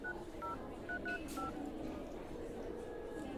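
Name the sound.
telephone number being dialed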